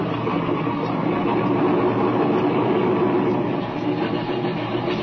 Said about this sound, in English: Hey, Speed's starting Bender's air wing. Well, I guess she must be all right. There's the engine. Look, he's taxiing over this way.